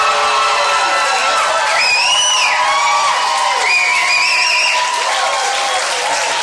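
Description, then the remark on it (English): Steady applause from an audience at a live event, given as an award is presented, fills the whole stretch, dense and loud, with a few high whoops and cheers rising over the clapping. “Go ahead, give a round of applause.”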